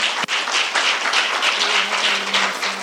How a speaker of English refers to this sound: I have my supervisor right here. If y'all could just give him a hand clap of praise and his beautiful family.